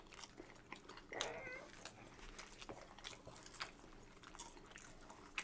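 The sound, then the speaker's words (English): Crunchy chewing of fries: a steady run of crisp, irregular bites and munches, fairly quiet, with a brief meow near the start and no talking. “I like the outer part of it because it's crunchy.”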